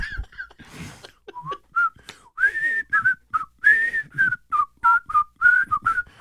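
Someone whistles a cheerful, bouncy TV theme tune, a quick series of short, clear notes rising and falling in a steady rhythm, with a few soft breathy noises between phrases.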